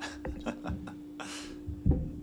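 Beer pours into a glass in a short, soft rush of foamy hiss, framed by a few light clinks and dull knocks, all fairly quiet.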